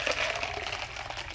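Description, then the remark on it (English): Water pours steadily into a glass, a continuous bright trickling with a faint rising ring, lasting about a second and a half with no voices. “I love some water.”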